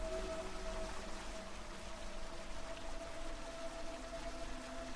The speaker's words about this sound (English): The water continues to pour in, and you know it'll be over your head at the bottom of the ramp.